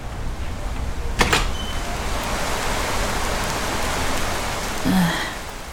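Steady rain falls outside, a dense continuous hiss with a brief sharper burst near the start and a faint low sound near the end. No one speaks.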